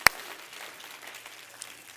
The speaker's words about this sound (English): Clap your hands again. Hallelujah.